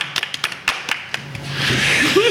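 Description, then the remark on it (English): A small group claps, starting with a few sharp, separate claps that quickly swell into a denser, steady patter of applause, moderately loud throughout. “That was a very stately applause.”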